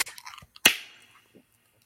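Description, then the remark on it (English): A can of Love Seat beer from Upper Pass cracks open with one sharp, loud snap, then a brief fading fizz of hissing carbonation with minimal spray. Faint metallic handling clicks come just before it, with no talking. “3, 2, 1, crack.”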